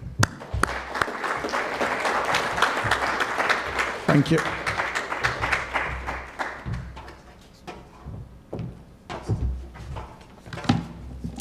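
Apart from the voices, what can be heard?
audience applause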